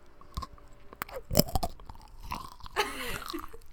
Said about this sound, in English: This is me eating chocolate.